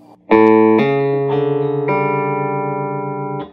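A distorted electric guitar plays a short hammer-on lick learned from Pat Grogan, starting on the A string and hammering on at the fourth fret, four low notes flowing into one another without hard picking, the last note ringing out loudly with steady sustain.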